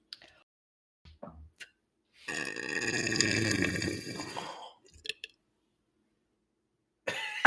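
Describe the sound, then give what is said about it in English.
After a few small clicks and breaths, a woman tries to burp on demand, forcing out a single loud, rasping, guttural sound that stretches for a couple of seconds like a low dragon growl. “can you burp on demand? Yeah, most of the time. Do it now.”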